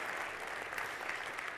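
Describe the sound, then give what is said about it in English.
A church audience applauds its volunteers steadily, a dense, even patter of many hands clapping at once with no break and no voices standing out. “Could we give them a round of applause, please?”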